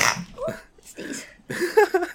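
A sudden, sharp sneeze bursts out, followed by a few rougher throaty vocal noises and brief sniffles, all fairly loud within a couple of seconds.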